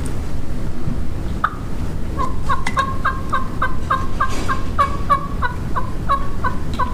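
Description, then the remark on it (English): A steady series of soft hen turkey yelps, about a dozen short notes in an even rhythm, over a constant low rumbling background with no talking. “But I can tell you that I've set and called subtle and just picked at them, just little like under the breath stuff, kind of.”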